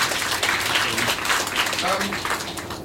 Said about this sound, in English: Oh, you can give me a round of applause too if you want to.